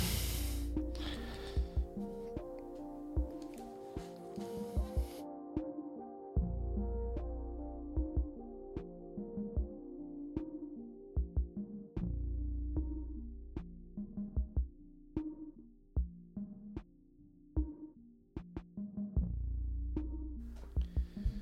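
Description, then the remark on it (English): A heavy truck rumbles past with a deep, throbbing engine drone and steady low tones, broader noise at the start, then pulsing low bursts and a few sharp clicks. No one speaks. “I have to wait till this truck passes by.”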